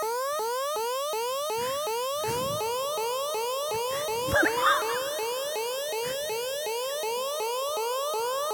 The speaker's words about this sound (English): You set off the alarm.